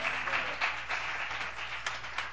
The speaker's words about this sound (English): Give me 5 people to clap your hands on that one.